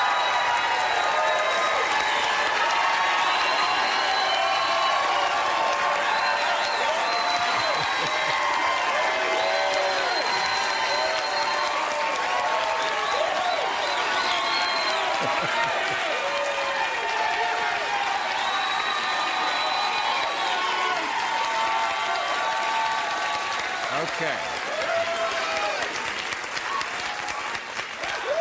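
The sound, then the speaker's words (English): Sustained audience applause and cheering welcoming Senator Bernie Sanders of Vermont fill the whole stretch, a dense steady roar of clapping with scattered whoops and shouts rising above it, loud throughout without letting up. “We always have to allow a little more extra time when Bernie is on, just for applause.”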